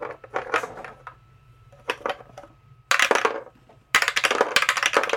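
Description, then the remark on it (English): Dice clatter and tumble across a hard tabletop in several quick rolls, the loudest rattling bursts coming toward the end, crisp with no voices. “But let's grab dice, because I have a few final questions.”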